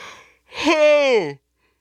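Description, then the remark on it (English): A single yawn: a breathy intake that swells into a drawn-out voiced tone sliding downward in pitch before cutting off, with no talking over it. “Sorry, I had a yawn.”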